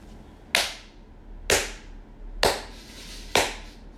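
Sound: applause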